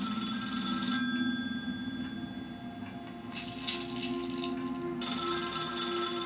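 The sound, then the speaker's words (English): A telephone rings in repeated bursts, a bright trilling bell that starts, pauses, then sounds twice more at steady volume over a low background hum. No one speaks. “I mean, look, he goes to see his mother, granted, but when that every time that phone rings, he just, like, his whole demeanor changes up, man.”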